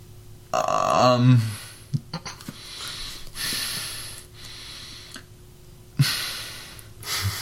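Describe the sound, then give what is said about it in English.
A person breathes heavily and loudly, with a run of forceful, rasping inhales and exhales, some with a throaty, grunting edge, spread over several seconds. “Intense breathing. Intensify.”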